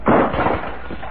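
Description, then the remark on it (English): A lamp crashes to the floor with breaking glass after somebody kicks the table: one loud impact that bursts out at once, then a short rattling clatter fading over about a second. “Somebody kicked the table and the lamp crashed to the floor.”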